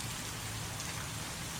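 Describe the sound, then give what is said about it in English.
Heavy rain pours down steadily, a dense, constant hiss of drops drumming on surfaces with no pauses and no voices. “Yeah, it is pouring rain here.”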